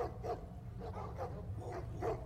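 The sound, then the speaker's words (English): Sled dogs pulling three sleds bark in a steady string of short, overlapping yaps, faint and distant, with a low rumble of background noise underneath. “The sound of dogs barking.”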